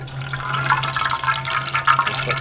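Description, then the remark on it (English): Water runs steadily from a tap for a couple of seconds, a continuous splashing rush with a low steady hum underneath, as something is rinsed under the stream. “Wash it off.”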